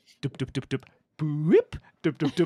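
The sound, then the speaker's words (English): A voice imitates the horn of Blackbeard's pirate ship: four quick, even staccato syllables, then a long, loud hooting note that swoops upward in pitch, followed by another rapid run of short beats. “That's the sound of a pirate going to blow the horn. It sounds like this.”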